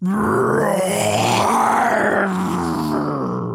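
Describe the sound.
A person imitates the MGM Studios lion roar as the opening, a long, loud, gravelly growl that swells and then trails off over about three and a half seconds, with no talking.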